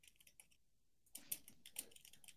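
Rapid, uneven typing on a computer keyboard as someone looks up a song, a few scattered clicks at first, then a denser burst of keystrokes tapping away with no one talking.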